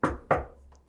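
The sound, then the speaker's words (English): Two crisp knocks on a wooden surface, each ringing briefly before fading, with a third knock just starting as the sound cuts off. No one speaks. “Knock on wood.”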